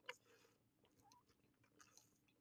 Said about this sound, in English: Ooh. Yeah, girls, guys, people. I took like a giant gulp. That was so good.